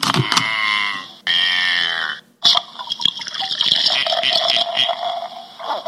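Thirsty Goat Smittlefest, a Märzen beer of 6% alcohol by volume, glugs out of a bottle into a glass in two loud, gurgling bursts, then settles into a steady, hissing fizz of foam. No one speaks.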